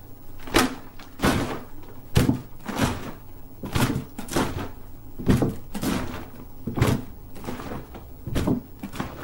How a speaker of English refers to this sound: I also have this milk jug. Maybe this can make the waves hitting the boat.